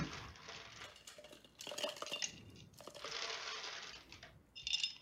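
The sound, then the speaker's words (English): Ice cubes clatter into a glass while a drink is being made, in a few bright bursts of rattling clinks, with a final ringing clink near the end. No one speaks. “Ice goes in the glass.”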